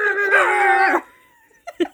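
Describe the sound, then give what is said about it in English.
A voice imitates a dog, starting with a loud, drawn-out howling bark that lasts about a second, then a brief pause and two quick, softer yips. “Thing is, at this point, I'd probably just bark at him.”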